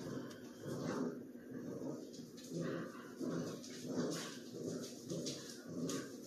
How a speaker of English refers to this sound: I'm just listening to my dogs.